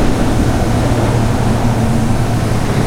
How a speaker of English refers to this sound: That was the Bruckner Expressway you just heard overhead.